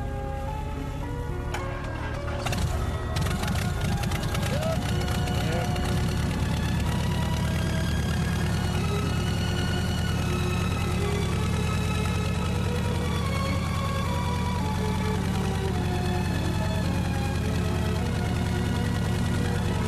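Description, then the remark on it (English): An airplane engine catches after a couple of seconds of sputtering, then settles into a loud, steady, rumbling drone with a constant low hum that continues to the end. No one speaks. “Right, Captain, we're ready. Good, we're going then. Let's hope it starts then.”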